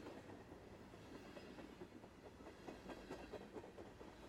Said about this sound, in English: You feel slight vibrations as the train powers up, and you can hear its mighty engine hissing as it builds enough power to pull the massive weight.